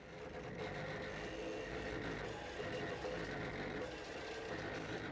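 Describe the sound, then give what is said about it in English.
An automatic weather chart recorder used by forecasters runs steadily. Its computer-driven pens move back and forth as the chart moves up and down, drawing lines of equal pressure. It makes a continuous mechanical whirring and faint scratching, a busy, even hum with no pauses and no voices. “This is a chart being drawn automatically.”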